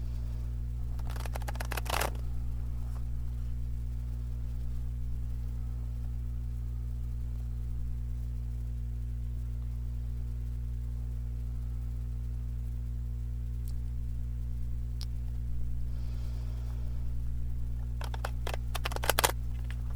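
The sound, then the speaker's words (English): Brief bursts of tarot cards being shuffled, a crisp riffling flutter near the start and again at the end, over a steady low electrical hum with long quiet stretches between. “I'm now going to ground and shuffle the cards and energy for the highest good of all, most benevolent outcome for all, and do conscious breathing as I do that.”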